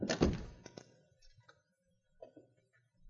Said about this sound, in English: Now, come on, shut the door and lock it.